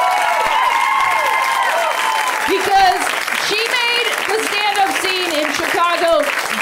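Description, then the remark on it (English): A crowd applauds comedian Cameron Esposito, clapping steadily and loudly, with rising and falling whoops and cheers riding over the dense, continuous applause. “And so I want all of you guys to give Cameron Esposito a huge round of applause.”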